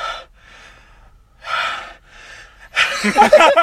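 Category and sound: vocal imitation, imitated heavy breathing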